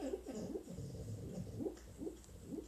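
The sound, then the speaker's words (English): A dog snoring, a steady series of low, throaty rumbles repeating every half second or so, fairly quiet with no voices over it. “It's fucking snoring and shit.”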